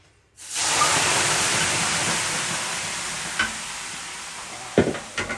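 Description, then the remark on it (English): Water hits hot sauna stones with a sudden loud hiss that swells into a steady, sizzling rush, slowly fading over several seconds, with a few faint knocks near the end. “let me throw some steam on.”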